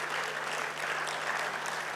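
A burst of steady applause congratulating the Springboks on their win fills the two seconds, a dense, even patter of many hands clapping with no pauses and no voices over it.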